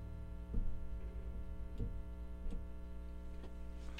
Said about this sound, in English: This is KDRT in Live Tracks in Davis, California. This is a 60-cycle hum.